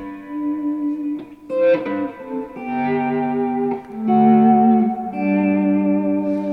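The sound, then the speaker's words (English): Sustained electric guitar chords fade in with slow volume swells made with an Ernie Ball volume pedal, washed in heavy reverb. Each new chord blooms smoothly over the tail of the last, with no voices present. “Ernie Ball, you're using the Ernie Ball volume pedal there very nicely. I do a lot of swells on a lot of the gigs.”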